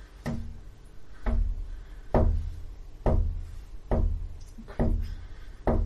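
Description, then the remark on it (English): Steady, rhythmic knocking on the glass of a bedroom window from outside, about one sharp rap per second, repeated six or seven times at a moderate volume with no voices. “rhythmic knocking on glass outside your bedroom window.”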